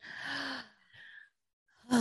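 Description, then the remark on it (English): A voice imitates a sharp, breathy gasp, followed by a shorter intake of breath, a brief pause, then another loud gasping breath at the end, clear with no words. “Audible gasp.”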